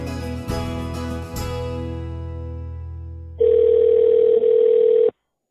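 A couple of sustained musical chords fade out, then the steady, buzzy ringback tone of an outgoing phone call from a studio to an economics professor at the University of Kentucky sounds once, loud and unbroken for nearly two seconds, with no voices.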